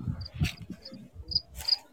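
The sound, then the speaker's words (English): Crickets chirp in short, high-pitched bursts repeating at a steady, unhurried pace over a low background rumble, with no voices; a sound effect played from an audio board. “Did you ever get your crickets?”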